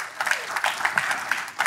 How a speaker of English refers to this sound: They're good, aren't they? Yeah. Yes, you may clap.